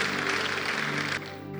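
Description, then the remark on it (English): A crowd at a religious service claps in a dense, steady patter for about a second after a prayer, the noisy burst cutting off abruptly and leaving a quieter hum. “Your clapping is like children who have received toffee.”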